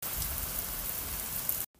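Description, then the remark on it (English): Steady, dense rainfall hisses continuously, a broad wash of patter with no voices, then cuts off abruptly into near silence at the end. “Have you ever been stuck inside your house caused by a rainy day?”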